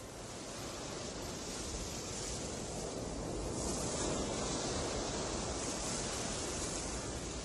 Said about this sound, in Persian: جالبه بدونید صداهایی که از امواج دریا میشنوید صداهایی که برای این آلبوم ضبط شده و از صداهای آرشیوی استفاده نشده.